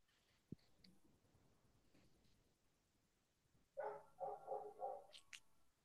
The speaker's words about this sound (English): There's like a dog barking outside, so hopefully no one can hear that. Oh, no, yeah. So hopefully no one can hear that. Every time I go to record it, decides it's time to bark. He knows.